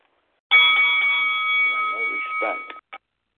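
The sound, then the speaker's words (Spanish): A single loud bell ring signals the start of a round in a rap battle, holding a bright steady tone for about two seconds before cutting off abruptly, followed by a brief short blip. “al sonido de la de la campana.”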